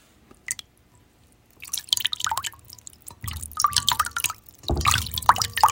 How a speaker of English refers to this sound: You can almost be there, picture yourself there, hearing the water moving in the basin and the quiet rustle of the robes and the clothes and the towels and all that's going on.